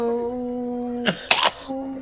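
Two short, explosive coughing bursts break through a steady humming tone, the second harsher and longer, before the hum returns. No one speaks.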